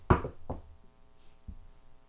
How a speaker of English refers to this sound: Knock on wood.